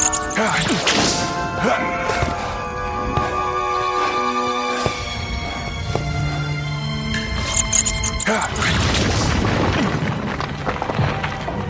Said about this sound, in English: Well, that's a whip. Oh, it's Indiana Jones.